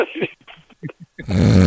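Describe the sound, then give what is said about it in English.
A person mimics the snoring of Al, a dog: a few short throaty snuffles, then a loud, sustained rasping snort that fills the end. “Al just come and snore at you. Snore you to death.”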